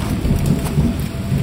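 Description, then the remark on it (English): Steady, dense rainfall hisses continuously, with a low rumbling undertone like thunder rolling beneath it. No voices are present. “The rain had washed it clean.”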